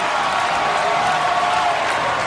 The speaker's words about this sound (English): So I want to play it again just because I think it's interesting. You can hear in the crowd, you can hear the commentators all going, oh, what's and trying to figure this all out in real time.